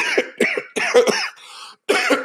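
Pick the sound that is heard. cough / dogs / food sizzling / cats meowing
cough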